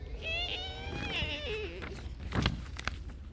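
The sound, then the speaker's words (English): A voice imitates a little wooden door creaking open with a long, wavering, high-pitched whine that slowly slides downward, followed by a few faint clicks and knocks. “There, he opened the little wooden door and peeped in. Give me a little creak this time.”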